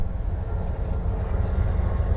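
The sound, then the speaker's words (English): A steady, low rumble from a Union Pacific coal train, number 7382, idling right beside the listener about an hour south of Gillette near coal mines; a constant droning engine hum with no talking and no distinct clanks or horn. “I drove about an hour south of Gillette to get here, past about 10 coal mines and a whole lot of pump jacks The train that sitting next to me says Building America on the front car, 7382 on the side.”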